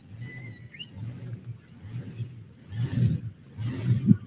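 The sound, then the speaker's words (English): The engine of a supercharged four-wheel-drive truck, Sudden Impact out of Geraldton, Montana, rumbles low and uneven, then roars in two louder surges near the end, with a brief high whine early on. No voices are heard. “Oh, can you tell this truck has a supercharger on it, guys?”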